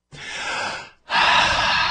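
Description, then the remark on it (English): A long, airy inhale followed by a brief pause and then a louder, fuller exhale, taken as a breathing exercise, with no talking. “A little meditation there, a little breathing exercise, a little, you know, it's just help you get through it all.”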